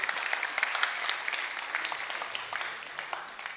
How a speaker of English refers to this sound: Right, sit down. Brilliant. Give them a cheer. All right, clap.